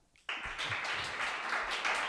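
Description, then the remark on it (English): A clapping sound effect played by a device starts abruptly and holds steady, a dense, crackling patter of many hands like a small audience applauding, fairly loud throughout with no voices over it. “But what else does it do? It claps.”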